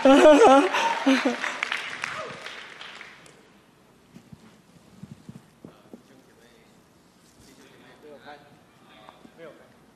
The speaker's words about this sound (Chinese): 哦，哇，这次是全场的欢呼。